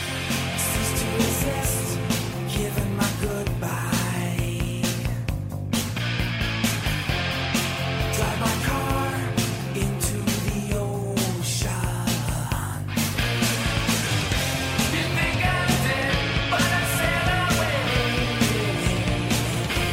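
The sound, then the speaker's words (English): A rock song plays loud and steady throughout, with dense distorted guitars, pounding drums and a raw, screamed vocal riding on top of the full band. “I'm thinking of a song like ….”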